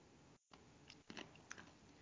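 Crisp crunching of an ice cube being chewed, with a few sharp cracks and grinding bursts spread unevenly over a couple of seconds, no talking.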